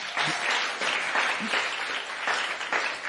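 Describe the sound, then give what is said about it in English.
An audience at TKG Academy gives the Lord a round of applause, dense overlapping claps forming a sustained, fairly loud wash of sound that keeps going without a break. “Please give the Lord a round of applause because he will do it.”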